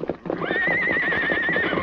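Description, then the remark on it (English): A big black horse hitched to a stagecoach, threatening to break loose, lets out a loud, sustained whinny that wavers in pitch, while hooves clop rapidly and unevenly underneath, busy throughout. “she'll get hurt if the horses break loose”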